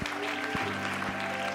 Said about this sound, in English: Come on, everybody, clap your hands to the Lord together now.